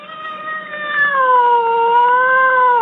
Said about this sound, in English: Cat. Distressed cat.